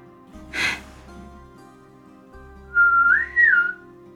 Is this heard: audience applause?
no